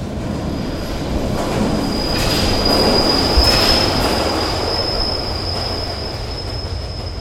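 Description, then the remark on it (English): An underground train rumbles loudly past a station platform, a steady roar with a thin, high metallic wheel squeal ringing through it, swelling slightly midway. No voices. “And that's where Kelly pushed most of his victims underneath the trains when they got to the edge of the railway platform.”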